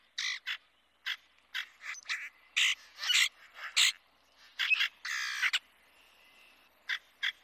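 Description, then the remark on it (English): Harsh, raspy grackle calls repeat in a rapid, irregular series of short bursts, some overlapping, with a few longer grating notes. Loud, with no talking. “Both are omnivorous, eating pretty much anything, and both have abrasive voices, fitting to birds called grackles.”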